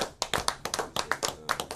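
A small group of people clapping their hands, a quick, uneven burst of crisp claps that overlap slightly, moderately loud, with no voices.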